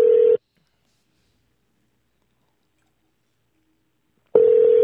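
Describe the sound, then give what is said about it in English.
Ringback tone of an outgoing phone call: a short steady electronic ring at the start, four seconds of silence, then a second ring. Clear and fairly loud, with no voices. “He answered the phone.”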